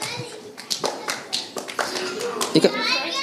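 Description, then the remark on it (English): An audience claps in a brief, uneven burst of many hands for performers who acted out a Bible story, the sharp slaps overlapping and fading out over about three seconds, with a few voices mixed in. “Can we give these guys a clap?”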